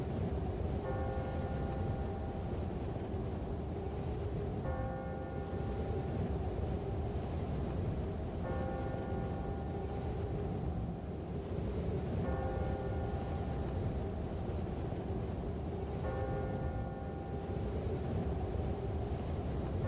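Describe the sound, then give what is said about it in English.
A large bell tolls slowly and steadily as it strikes twelve, resonant strikes spaced evenly several seconds apart, each ringing out over a constant low background rumble with no voices. “Suddenly, as they stood together in an open place, the bell struck 12.”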